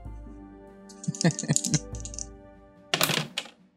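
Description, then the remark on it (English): Dice, a D6 and a D8, clatter across a hard tabletop for a perception roll in a tabletop game, a cluster of quick, sharp knocks and rattles, followed a moment later by a louder burst of tumbling clicks. “Oh, I cannot roll well. That's a 4. And okay. I even switched dice.”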